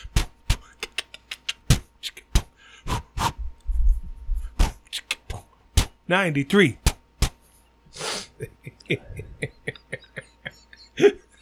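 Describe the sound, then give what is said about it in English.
Clumsy human beatboxing: uneven mouth clicks and pops in an irregular, stumbling rhythm, a wobbly voiced warble partway through, then a hissing burst and more scattered pops. “The worst beatboxer I've ever heard in my life.”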